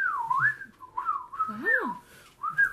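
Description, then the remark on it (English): A person whistles a bird-like tweeting tune, a run of sliding, warbling high notes with brief pauses between phrases, rising and falling in pitch, loud and clear with no talking. “anyways, but, like, this bird starts, yeah, like, you know, it starts tweeting...”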